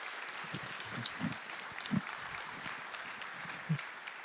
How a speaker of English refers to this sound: Hey, church fan, can we just clap to say thanks for sharing their heart and their willingness to open up?